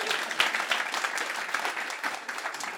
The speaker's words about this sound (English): That was so slick. That was excellent. Yes, a round of applause.